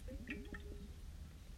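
A brief sip of water: faint wet slurping and small liquid squishes, followed by a soft swallow, with no talking.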